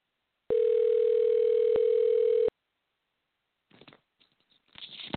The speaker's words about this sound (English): I'm going to try to call her one more time here and see what happens. It's actually ringing this time, so maybe she'll pick up.